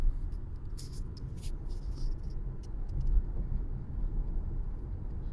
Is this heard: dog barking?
no